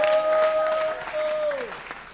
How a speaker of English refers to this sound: Receive the power and give Jesus a clap offering and a shout in the house.